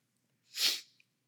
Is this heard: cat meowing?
no